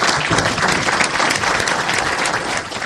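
An audience applauds at the close of the Future Tech session of the Legal Tech West Coast conference in Los Angeles, in a steady, dense round of clapping that stays loud and even for about three seconds, with no one speaking over it.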